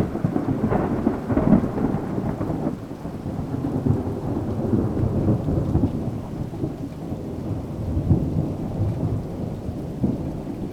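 Steady rainfall pours without pause while deep thunder rolls and rumbles underneath, swelling in waves across the whole stretch. No voices, just the continuous, fairly loud storm.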